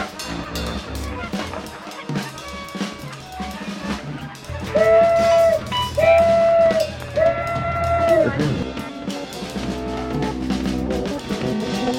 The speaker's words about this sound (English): And at 12:05 on the crowded and noisy waterfront, the tugboat Elsie whistled that she was ready for her part of the experiment.